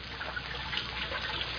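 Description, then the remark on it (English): Water splashes and sloshes in a steady, churning wash, moderately quiet, as a person stands up in water about 3 feet deep, without sharp individual splashes and with no one speaking. “I said stand up. The water's only 3 feet deep.”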